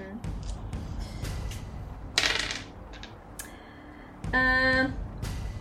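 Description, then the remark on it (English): Dice clatter and roll across a hard tabletop for an observation roll in a quick burst of sharp clicks and knocks, fairly loud, with a brief ringing tone partway through. “So, Can you make an observation roll for sure?”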